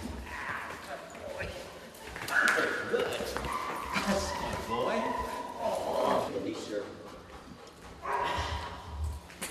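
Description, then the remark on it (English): An 86-pound puppy barks and whines in bursts while being taught upper body bitework, with high yelps and drawn-out whimpers, over scuffling and thumping movement in the background. “When you have bad knees and an 86-pound puppy that's as strong as an ox, and you're trying to teach him upper body work, you have to anchor yourself to a wall like this.”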